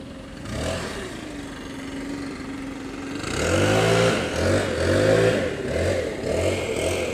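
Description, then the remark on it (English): A leaf blower engine drones steadily, then roars louder, its pitch rising and falling in repeated surges as it revs. No one speaks. “Then you're really milking it with that leaf blower.”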